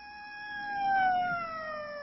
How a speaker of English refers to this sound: Strange. That's like the fifth siren I've heard in the last hour.